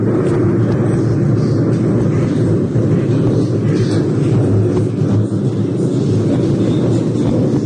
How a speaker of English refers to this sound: That is thunder.